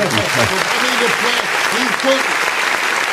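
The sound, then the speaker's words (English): A steady burst of applause, dense crackling hand claps filling the whole clip at an even loudness, with some indistinct voices murmuring underneath. “Got to give you some applause again on that, brother.”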